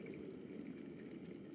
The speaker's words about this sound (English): As the kettle finishes boiling, you fill your hot water bottle